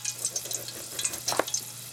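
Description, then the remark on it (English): Water runs from a tap with a steady, hissing splash and a few brief louder bursts, fairly quiet, over a low electrical hum, with no one speaking, as warm water is run for soaking slit green plantains to loosen their peel. “And the shortcut for this right here, you get a slit down the middle, soak them in warm water for about 3 minutes, and that peel will come right off.”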